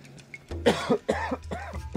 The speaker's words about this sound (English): Excuse me, talking too much and it's dry in here. Sorry about that. I'm not going to edit that out. So you're going to have to listen to me cough. Sorry.